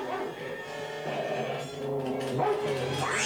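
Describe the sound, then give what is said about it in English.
A dog barks and yelps in a drawn-out, whining run of sounds that bend up and down in pitch, fairly loud, with no one talking over it; a sound effect from a film. “That sound effect, that dog noise, is a very familiar... I feel like that might have been reused as well, that dog sound.”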